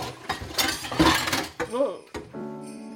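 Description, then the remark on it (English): Bowls, chopsticks and cups clatter loudly in a dense burst of clinks and knocks as hand-washed dishes are unloaded to use the dishwasher on Christmas, followed by a short vocal sound and a lingering ringing tone as the clatter dies away. “I started unloading the bowls, chopsticks, and cups I had hand washed the day before.”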